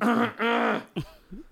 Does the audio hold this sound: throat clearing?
yes